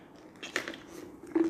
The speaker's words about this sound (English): If you don't have water or something to drink, if you don't have your Bible and your notebook, grab it, quick pause, and come back. I'm drinking some water.